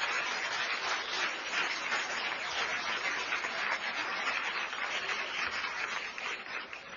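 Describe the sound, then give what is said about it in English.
A round of applause from a crowd for the Sunday Club's harvest work, a dense, steady patter of many hands clapping that holds an even level for several seconds before easing slightly at the end, with no talking. “Big round of applause for the Sunday Club.”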